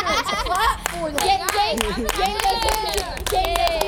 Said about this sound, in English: Clap for them.